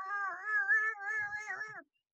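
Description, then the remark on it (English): A single long, drawn-out cat meow, fairly loud, wavering in pitch for nearly two seconds before cutting off abruptly, with no talking over it; a female cat that has been locked outside. “Sorry, I'm looking for my cat. I locked her out.”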